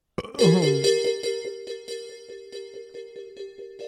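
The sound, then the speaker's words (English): Someone plays around on a newly acquired electronic keyboard: a bright, buzzy synth tone opens with a quick sliding flourish, then holds one steady pitch pulsing in a regular rhythm, moderately loud with no voices. “Someone just got a keyboard and they're playing around with it.”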